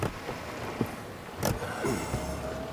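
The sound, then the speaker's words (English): A car approaches around a corner, its low engine rumble and tire noise swelling steadily, with a brief sharp rattle midway. No one speaks. “A vehicle's coming up around this corner”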